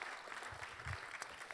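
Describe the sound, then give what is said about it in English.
An audience applauds God steadily, a dense wash of many hands clapping at an even level, with no speech over it. “We can give an applause to God right now.”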